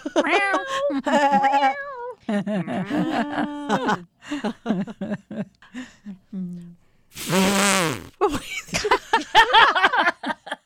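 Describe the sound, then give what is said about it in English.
People imitate animal sounds with their voices: a series of drawn-out, wavering meows, then a loud brassy trumpeting blast meant as an elephant, followed by more playful vocal squeals. “We can make our own woof, meow.”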